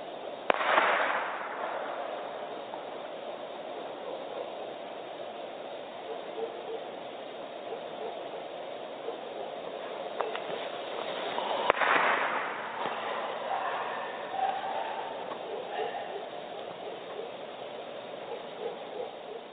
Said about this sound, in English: they described it as a half bark, half laugh. And I think that pretty accurately describes that sound